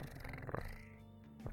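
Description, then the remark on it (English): A cat purring, a steady, fairly loud rumbling drone that runs continuously for the whole moment, with a slightly throaty, voiced edge near the end. “Yeah, don't you hear it speaking right now? It's purring a lot.”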